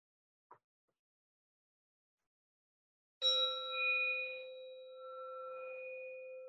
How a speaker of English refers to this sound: And I'll call you back with the bell.